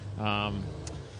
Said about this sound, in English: I think we're in the way of this truck now. Keep walking. I think he's following us. Keep walking. Yeah, it's a busy paddock here.